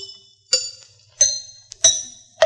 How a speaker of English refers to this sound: The book says one can detect an ailing tooth by the dull sound it makes when struck lightly by a hammer. Sounds logical. Let's give it a try.